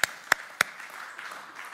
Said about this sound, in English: Go ahead and give him praise right now for it. Somebody put your hands together and clap to the Lord.